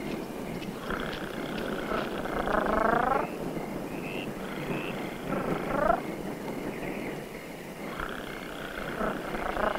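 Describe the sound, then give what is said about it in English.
A deep, rumbling purr like a jungle cat, made in a film scene by the character Aunt Cheryl from the bushes at an old woman, rolls in three drawn-out, moderately loud bursts over a steady hissing background with no talking. “From the bushes you hear... Aunt Cheryl's purring at her like a jungle cat.”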